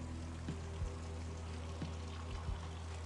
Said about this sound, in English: That's the pitter-patter. There's the rain from the gutters. Sounds like someone pissing, but it's not. It's rain. It's gutter rain.